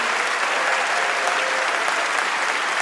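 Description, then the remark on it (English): A live show audience gives another round of applause for all the evening's guests, a dense, even patter of many hands clapping at a consistent loudness with no voices standing out. “And can we have one more round of applause for all our guests tonight?”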